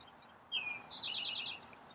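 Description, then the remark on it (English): Birds chirp and sing in spring in America as the sun goes down: a clear descending whistle followed by a quick, bright run of repeated trilled notes over a soft outdoor hush, with no voices. “There's birds all around me.”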